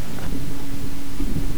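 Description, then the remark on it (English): Low, continuous thunder from lightning strikes rumbles steadily throughout, deep, with a faint tonal hum running beneath it and no voices. “I have lightning strikes rumbling in my ear, which tells me that it's time to talk about EMP Shield.”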